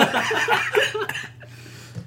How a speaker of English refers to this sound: I've had a cough for like a month and a half now. It's fucking annoying. Yeah, I should probably go get it checked.